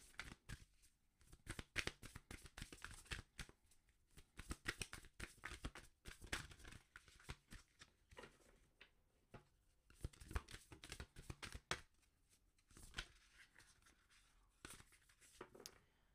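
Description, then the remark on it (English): An astrology card deck being shuffled, with bursts of rapid riffling and soft flicking that come in waves, separated by brief quieter pauses, with no talking. “All right, we're going to get started using the astrology dice. I mean, the astrology deck, all right, to see the energies.”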